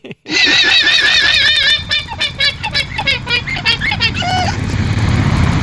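A llama screams loudly while being sheared: a shrill, wavering, nasal cry that holds steady for over a second, then breaks into rapid stuttering bursts over a buzzing background noise.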